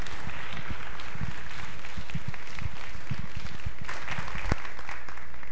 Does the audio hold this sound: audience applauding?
yes